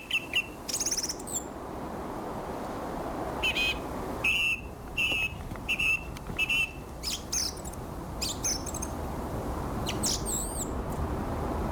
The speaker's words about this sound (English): Imagine, if you will, a cold, very grey, winter's day, afternoon, weekend. It's still, there's no wind. And a single thrush doing its business.